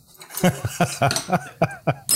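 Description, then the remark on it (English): A hand bell rung in a quick series of about eight metallic clangs, each bright and ringing with a short decay, fairly loud and irregularly spaced, with no voices. “Where's my bell?”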